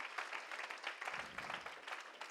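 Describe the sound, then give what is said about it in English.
An audience claps their hands for Jesus in a steady, dense wash of applause that holds at an even level throughout, with many overlapping claps and no clear rhythm. “You can clap your hands one more time to him.”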